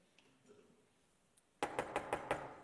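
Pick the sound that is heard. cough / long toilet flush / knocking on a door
knocking on a door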